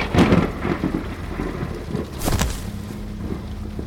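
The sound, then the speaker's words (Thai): Steady heavy rain hisses throughout while deep rolls of thunder rumble underneath, with a loud crack near the start and another surge about two-thirds through. No voices are present. “สายลมพัดรุนแรงขึ้นราวกับมีพายุ”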